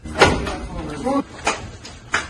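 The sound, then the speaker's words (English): Several heavy knocks on a door land at uneven intervals, loud, with a voice talking briefly between the blows. “The hell is this knocking like the police?”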